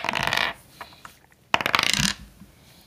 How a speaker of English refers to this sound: I'm rolling the dice. Good enough.